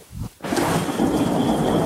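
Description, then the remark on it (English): A thunderstorm: heavy rain roars in after a brief quieter moment, a steady, loud wash of noise with a deep rumble of thunder beneath it. No one speaks. “The wind subsides for a little bit as you are in the mountains seem to be blocking the majority of that storm that was impacting you.”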